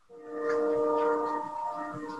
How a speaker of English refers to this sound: As what sounds like a train undercuts the moment. I can't hear it.